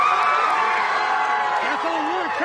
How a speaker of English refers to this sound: Outside the courtroom, a crowd erupted in cheers.